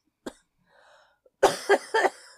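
A single sharp cough, a brief pause with a faint breath, then a rapid burst of three harsh, loud coughs, ending with a smaller cough, as a person coughs incessantly.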